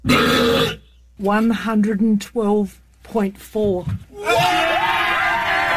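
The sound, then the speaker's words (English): A world-record burp from Australia, measured at 112.4 decibels: a very loud, drawn-out burp rumbles, broken into several croaking, voiced bursts with brief pauses between them before a final long, harsh belch. “All right, and finally, let's end on a world record for the loudest burp coming out of Australia.”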